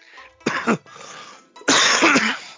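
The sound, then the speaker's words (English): Two loud, painful coughs: a short harsh one, then a pause and a longer, rougher, hacking cough. No one speaks. “Oh my god, it feels like I get stabbed every time I fucking cough.”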